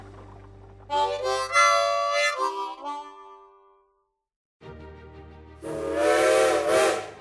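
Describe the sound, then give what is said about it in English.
A steam train whistle sounds twice, a loud sustained shriek, then a short pause before a second blast mixed with a rush of hissing steam. Prominent, with no talking. “All aboard! Boy, I love trains.”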